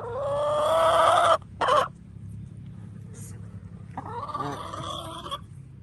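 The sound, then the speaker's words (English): Chickens cluck: a loud, drawn-out squawking call, a quick sharp burst, then a pause before softer clucking returns, all over a steady low outdoor rumble. “This one's going to the chickens.”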